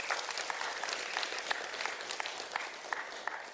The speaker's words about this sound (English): Isn't that cool? Yeah, you can clap for that.